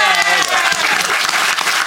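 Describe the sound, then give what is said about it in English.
A studio audience applauds steadily, a dense wash of clapping hands at full volume throughout, with a hint of voices mixed in. “A round of applause for our audience.”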